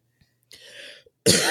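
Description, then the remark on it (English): Throat clearing by a woman, a raspy rumbling burst of about half a second, followed by a short pause and then a loud, harsh cough, with no talking. “… is over there coughing and clearing out some passages.”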